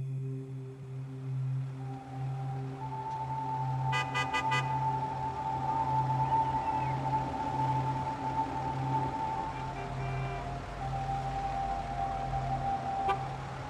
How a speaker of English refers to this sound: As traffic jams go, it is the worst she has ever encountered. Hundreds of cars stand gridlocked, nose to tail, and three lanes deep on the motorway all around her.